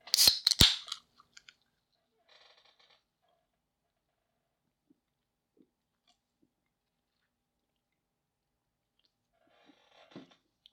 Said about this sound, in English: So excuse me while I get a sip off of my orange vanilla Coke here. Because, yes, fuck it. That is the official beverage of Trinus Magnus Punches Reality.